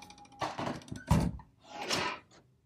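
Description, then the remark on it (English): A door is pushed shut, with a scraping swing followed by a single solid, low-pitched thud, then a softer whooshing rustle as things settle. No one speaks. “I have to shut the door, sorry.”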